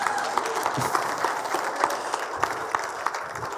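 An audience claps steadily for a few seconds, a dense wash of many hands with scattered sharper claps standing out, fairly loud and even throughout.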